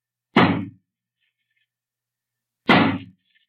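Two heavy, splintering axe blows land against a wooden door barred on the inside, a couple of seconds apart, each a loud crack that rings and crumbles away, with nothing in between.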